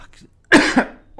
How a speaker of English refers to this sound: Sorry. I've had a cough for 3 weeks now. It's not a good time for me to do a monologue.